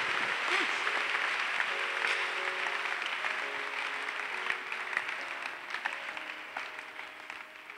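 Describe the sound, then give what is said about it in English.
An audience claps steadily for about eight seconds, a dense, continuous wash of many hands at even loudness, with faint sustained musical notes humming underneath. “When you are also clapping, you don't clap well. Clap well.”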